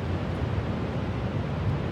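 Steady wind and rolling waves on the Lake Huron shoreline form a continuous, fairly loud rushing roar with a deep low rumble, and no voices.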